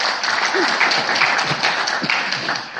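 An audience at Dorchester Family Church applauds steadily for about three seconds, a dense, even wash of many hands clapping at a fairly loud level with no talking over it.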